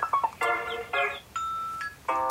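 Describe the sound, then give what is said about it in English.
A phone that was left switched on rings with a bright electronic ringtone reminiscent of a video game, playing a quick melody of chiming tones, a few short notes and then longer held ones, repeating alone with no talking. “I just gotta find this phone.”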